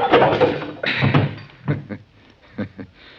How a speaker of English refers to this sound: That's a poke in the jaw I gave you that knocked you out